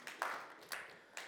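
Faint, distant clapping from an audience, heard as a few soft, scattered bursts spaced about half a second apart rather than a full roar of applause. No one speaks.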